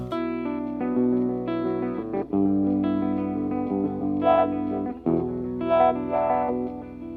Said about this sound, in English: So this is just like the mono wah that I'm using.